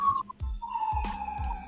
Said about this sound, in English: So sorry for this siren. I can't mute on Anchor.